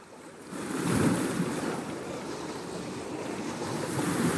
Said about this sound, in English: Welcome to Annapolis. We are now on a boat dock. As you can hear, there are speedboats rushing past us.